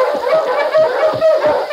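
A sled dog team of huskies, including one called King, barks and yips together in a loud, continuous chorus, the overlapping calls filling the whole short stretch with no one talking.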